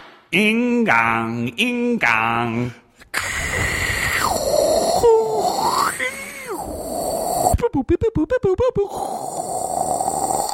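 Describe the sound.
A voice imitates a dial-up modem: sung beeping tones at first, then a long harsh, hissing screech with sliding pitch, rapid stuttering pulses, and a final buzzing hiss.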